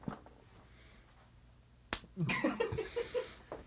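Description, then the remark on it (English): A person slaps another person: a single sharp, loud slap cracks out after a quiet stretch, followed right away by voices and what sounds like laughter. “I slapped him.”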